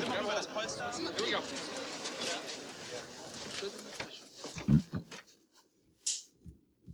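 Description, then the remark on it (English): A short, loud, low burp right up close to the microphone, coming after several seconds of overlapping chatter and followed by a few quieter sounds. “Just burped right into the microphone.”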